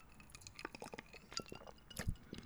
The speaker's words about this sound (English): Hold on for a second. Pardon me as I sip my drink.